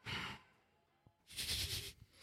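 Two loud, airy breaths blown right into the microphone, one at the start and a longer one a second later, with a brief quiet pause between them and no talking.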